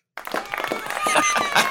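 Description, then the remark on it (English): A short burst of applause from a small group, quick dense clapping that starts abruptly and stays steady, with some whoops or voices mixed in over the top. “That's the appropriate amount of applause.”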